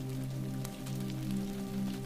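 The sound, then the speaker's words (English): Steady rain pattering continuously on a surface, with scattered droplet ticks over a soft, constant low hum, at an even moderate volume throughout and no voices. “Warmed by the fire, lulled by the rain, you find yourself floating on the waves of sound into the world of sleep”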